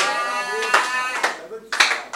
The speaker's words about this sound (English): Lord, as I clap my hands and pray. No, let me change it. As I slap my hands and pray.